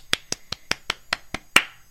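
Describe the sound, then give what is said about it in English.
Eight quick, sharp hand claps in a steady, even rhythm, congratulating pitcher Trevor Bauer on his Cy Young Award, with the final clap landing noticeably louder. No one speaks. “I was clapping.”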